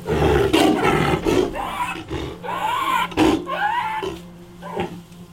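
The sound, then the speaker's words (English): A hoarse, raspy roar from an animal suffering from gastroenteritis repeats in several rough, throaty bursts, loud, strained and ragged like a chain smoker's hacking cough, with brief pauses between outbursts. “But he still suffers from gastroenteritis, and his roar sounds like a chain smoker's cough.”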